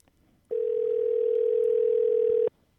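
A steady telephone dial tone hums at a single low-mid pitch for about two seconds while a call to a friend is being placed, starting and stopping abruptly, with a faint hiss beneath it and no talking.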